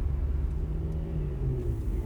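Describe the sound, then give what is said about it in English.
A car drives steadily at about 90 miles per hour on an empty road with the pedal all the way down, its engine and tires making a deep, continuous rumble with a low droning hum that stays loud throughout, with no voices. “The pedal is all the way down, and the car is going about 90 miles per hour.”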